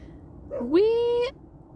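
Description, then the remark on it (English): A single drawn-out dog whimper at a trailer park, rising in pitch and then holding steady for about half a second. It comes through clear over a quiet background, with no other voices. “There's going to be weird trailer park sounds in the background. I apologize. Yeah, there's side-by-sides and dogs and people.”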